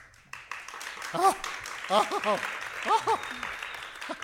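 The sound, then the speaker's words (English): Assembled fans burst into loud, sustained applause as a man gets up on a tiny makeshift stage in front of them, a dense wash of clapping with excited whoops and cheering voices rising over it in short bursts. “gets up on a tiny makeshift stage in front of all the assembled fans, who give him an uproarious applause.”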